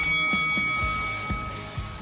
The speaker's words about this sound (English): That's the bell, which means we're fighting.